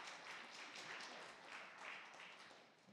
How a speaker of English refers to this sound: I think we have a round of applause here. Good.